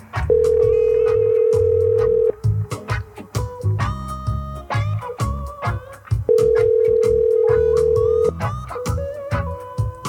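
An unanswered phone call rings out: two long, steady ringback tones, each about two seconds, separated by a pause of about four seconds. A busy, loud background sound continues underneath throughout.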